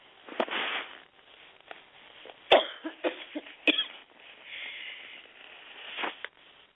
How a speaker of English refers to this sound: Sorry about that. I didn't mean to cough in your ear.